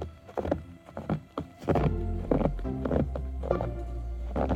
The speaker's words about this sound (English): Maybe he's forgotten what it's like to dig your car out of slushy banks, but the crunch of footsteps through snow